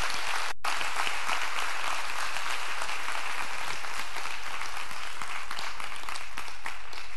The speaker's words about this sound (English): So if you're a senior, go ahead and stand on up. Yeah, Faith family, we can give them a round of applause.